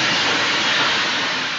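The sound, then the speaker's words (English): A loud, harsh rush of steam from a steam train, a broad hissing roar that holds steady for a second and a half, unbroken, with no voices. “And when we hear that, we have the steam of the train hit, the scream, the screech of the train hits at that moment.”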